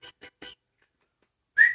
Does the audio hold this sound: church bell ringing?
no